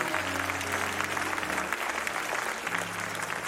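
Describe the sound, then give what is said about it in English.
A large church audience claps steadily and enthusiastically as a hand clap offering to God, a dense, sustained wash of applause with low organ-like tones humming beneath it. “Come on, give God a good hand clap offering.”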